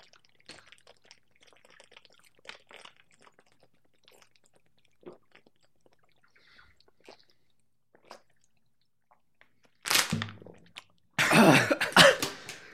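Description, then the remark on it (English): Someone chugs a drink from a bottle in a long run of soft, wet swallows, then breaks off with two loud, harsh coughs or sputters at the end. “Bro, I got like halfway through that bottle and I was like, this is This stupid.”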